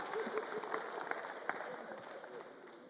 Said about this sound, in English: People who not smile, they won't clap like you. The rest are clapping except you.